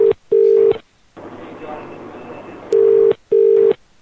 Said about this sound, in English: Your phone's ringing. Pick it up.